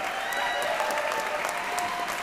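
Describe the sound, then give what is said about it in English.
A steady round of applause from a crowd, dense clapping holding at an even level for a couple of seconds, with no voices heard over it. “we should get a round of applause, Coco. Make sure you put that in there.”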